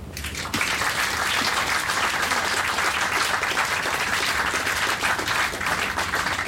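An audience breaks into sustained applause for Derek Bateman as he is introduced at a meeting about the media, a dense wash of many hands clapping at steady loudness for several seconds, with no voices rising above it.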